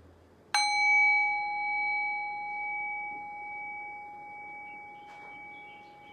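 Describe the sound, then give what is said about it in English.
A single meditation bell is struck once, ringing out clearly with a pure, sustained tone that slowly fades over several seconds, with a faint soft knock partway through. “Allow the decay of the bell to guide your thinking mind into silence.”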